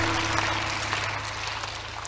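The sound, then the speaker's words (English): A crowd claps hands together at a preacher's call to clap and shout an amen, a dense, steady wash of applause that holds at an even level throughout, with no distinct shouted words standing out. “Clap your hands and shout an amen.”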